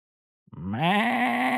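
A goat lets out one long, wavering bleat after a brief moment of silence, loud, holding steady to the end with no talking.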